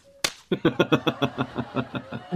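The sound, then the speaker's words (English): A single sharp, loud smack, a slap in the face, rings out, then a quick, steady run of bouncy pulsing sounds follows and slowly fades. “if I were Dr. Albright, I'd slap you in the face.”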